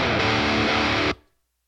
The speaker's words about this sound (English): So here's the guitars again without the reverb, and listen to how they immediately stop when I stop the recording. Like the tone goes and it's gone.